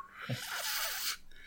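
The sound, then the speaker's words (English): A person imitates the whistling swoosh call of the Yeti, an ape-like creature, with one long, breathy, airy hiss lasting about a second. It begins with a brief low throaty catch and then cuts off sharply. “So, like, then the being was always depicted as an ape-like creature who carried a large stone as a weapon and makes a whistling swoosh sound.”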